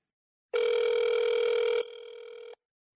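A single steady electronic phone ring tone, from a call to a real promotional Stranger Things phone number before a voicemail message from the character Murray Bauman, sounds for about two seconds, loud at first and then dropping to a softer level before cutting off, with no voices.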